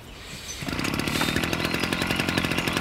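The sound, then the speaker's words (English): A leaf blower's small engine suddenly roars to life after a brief quiet moment, then runs loud and steady with a raspy, buzzing drone. “Does that leaf blower there work?”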